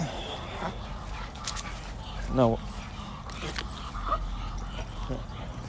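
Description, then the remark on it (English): A small Chihuahua mix dog lets out a single sharp, high yip that trails into a short whimper amid steady outdoor background noise, with a person briefly speaking, while being walked at Rio de Los Angeles Park in Los Angeles. “And my dog is an aggressive Chihuahua mix.”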